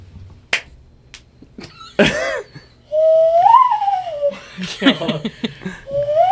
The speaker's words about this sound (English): Hand whistle.